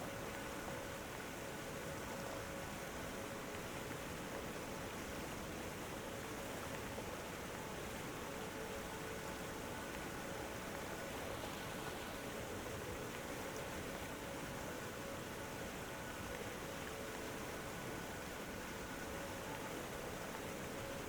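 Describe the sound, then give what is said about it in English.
A powerful waterfall cascading over a cliff in many different directions roars in a steady, dense wash of rushing water that never lets up for the full stretch, with no voices and no breaks in the sound. “Below is a powerful waterfall.”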